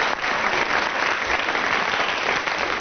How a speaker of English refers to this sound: Right, round of applause for Graham Garden. Thank you.